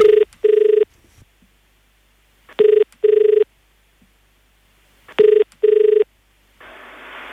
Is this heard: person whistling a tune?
no